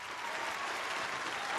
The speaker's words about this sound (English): Now, I'm talking about shout out and round of applause to the room.